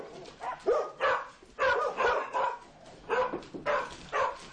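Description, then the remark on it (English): Several dogs waiting at the door for an arriving visitor bark and whine excitedly, a steady run of yips and whimpers in uneven bursts with no one talking. “I've told all the dogs he's coming, and everybody's waiting at the door for him.”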